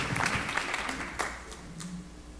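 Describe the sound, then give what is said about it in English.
A small crowd applauds, a soft and steady wash of clapping with a few sharper individual claps standing out, without any talking. “You're supposed to be clapping.”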